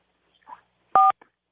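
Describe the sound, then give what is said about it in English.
A single touchtone keypad beep as a caller presses 4 on a touchtone pad to reach Art Bell's radio show, a short, loud dual-pitched tone lasting a fraction of a second, preceded by faint handling noise on an otherwise quiet phone line. “Press 4 on your touchtone pad now, please.”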